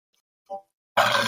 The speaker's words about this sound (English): Sorry. I had a burp.